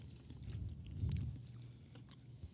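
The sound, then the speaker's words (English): Biting and chewing of a flaky cookie, with soft crumbly crunches and moist mouth sounds repeating steadily for a few seconds, no talking. “It's flaky, but when you bite into it, it's soft.”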